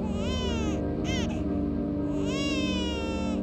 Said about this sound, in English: Hoori heard a baby cry and looked up to see Toyotama walking out of the sea, holding their son wrapped in the blue blanket Hori's mother had once knit for him.